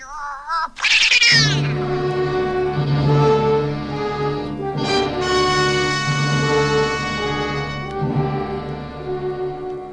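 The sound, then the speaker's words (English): A female cat in a house yowls loudly and continuously, its drawn-out wailing meows rising and falling in pitch for the full length with only brief breaks. “Well, if she's that important, we'll get along. Won't we, Kitty? Nice, Kitty.”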